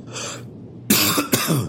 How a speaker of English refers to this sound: You did not. You coughed, dude. I heard it. When you listen to this in post, you'll hear yourself coughing.